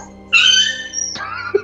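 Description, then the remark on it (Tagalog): A dog lets out a high, drawn-out whine lasting about a second, then drops into a lower, wavering whimper. It sounds fairly loud, with no one talking. “Buta kinain ng manananggal yung aso”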